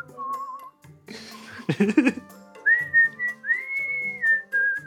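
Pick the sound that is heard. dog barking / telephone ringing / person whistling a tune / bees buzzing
person whistling a tune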